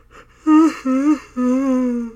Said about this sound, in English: It's more of me yawning than crying.